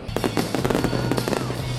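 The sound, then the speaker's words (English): Fireworks in Tulsa, Oklahoma, popping and crackling in a quick, irregular string of sharp bursts, fairly loud and continuous over a steady low rumble, with no one speaking. “Fireworks in Tulsa, Oklahoma, one of the most reliable Republican states in the country.”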